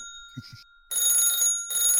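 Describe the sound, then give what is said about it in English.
An old-style telephone bell rings in two loud, rattling metallic bursts with a short gap between them, after a pair of soft low thumps. “I will put my receiver in my ear to answer the phone.”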